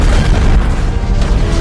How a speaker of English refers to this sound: And right at that moment, Hawkeye triggers the explosion.